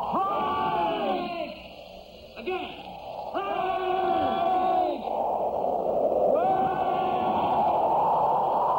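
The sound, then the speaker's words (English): Several men bellow together in long, drawn-out unison shouts, about four in a row, calling out to someone over a constant loud rushing roar of strong wind. “Come on, boys. Yell together. They didn't hear us.”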